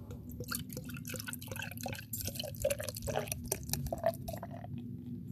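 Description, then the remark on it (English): Light beer is poured sloppily into a glass, a steady splashy gurgle with fizzy crackles and small drips running for several seconds, leaving a big foam head, with no one talking. “I had to get the sound in there, so the pour was sloppy.”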